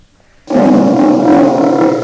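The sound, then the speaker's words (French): A lion roars loudly, bursting in suddenly after a brief quiet and holding one long, rough, rumbling roar for over a second and a half, with no talking. “Un lion.”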